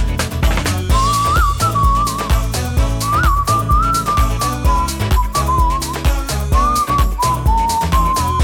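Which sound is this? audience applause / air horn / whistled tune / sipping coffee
whistled tune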